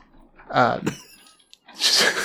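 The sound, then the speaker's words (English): A dog whimpers, a short high whiny cry that wavers in pitch, followed moments later by a burst of breathy, hissing noise. The dog, which dislikes rain, is whimpering indoors because it has just started raining harder, audibly inside. “Also, I think the reason why she's whimpering is because it just started raining harder, like audibly in here.”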